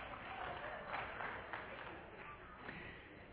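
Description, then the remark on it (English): A crowd applauds itself after a game of Simon Says, a dense, steady wash of many hands clapping that holds at an even level for a few seconds with no clear individual claps standing out. “The rest of you can applaud yourselves and everybody can be seated.”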